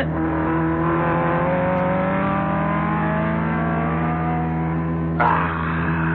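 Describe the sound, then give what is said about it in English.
A car engine revs steadily with rising and falling harmonic tones, then a brief burst of noise as another vehicle seems to sweep past near the end. No one speaks. “He's going to pass you. Impossible. Not only possible, but there he goes.”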